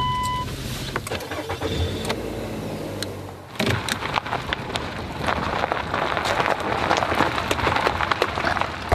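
A car engine, a grandmother's car, idles with a low steady hum, then catches and roars up into a louder, rougher drone as the car pulls away, with a hissing, rain-like wash over it.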